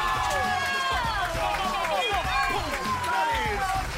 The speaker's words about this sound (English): And then there's the cheering and all the applause here.